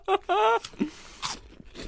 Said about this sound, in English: They are crunchy good.